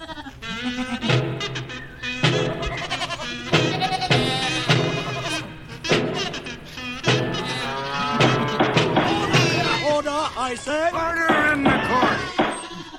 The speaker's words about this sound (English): Where are the sheep? There they are.